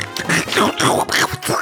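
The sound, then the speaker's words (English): A voice imitates the cartoon duck Donald Duck, producing a quick string of buzzy, nasal, quacking syllables in uneven bursts, loud and raspy, with no other sounds. “What about Donald Duck?”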